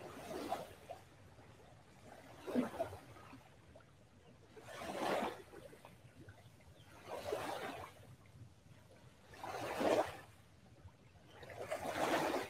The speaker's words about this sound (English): I know the waves are loud, but what else do you hear?